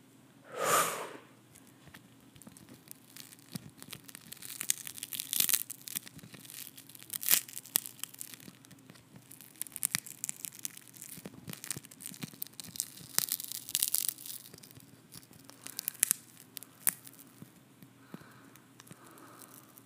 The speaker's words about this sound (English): Today, I have my old iPhone 6 screen protector, and it's cracked, so I thought we could maybe play with that today, okay?